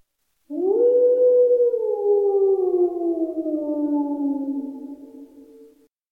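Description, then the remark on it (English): A single long, wolf-like howl rises briefly, then slowly glides downward in pitch, held steadily for about five seconds before fading out. It is fairly loud, with no talking. “Can you howl?”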